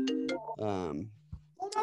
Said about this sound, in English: I'm getting a FaceTime phone call. I'd like to apologize for that.